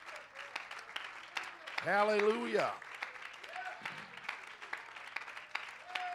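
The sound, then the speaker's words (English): A church audience applauds their pastor and his family with a steady, dense patter of hand claps throughout, while a voice rings out loudly over the clapping partway through and a few other voices call out faintly. “Why don't you give your pastor and his family a good hand clap?”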